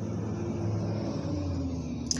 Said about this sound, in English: Y'all hear, I'm sure you could hear like semi-trucks and, you know, fucking all this shit in the background, so.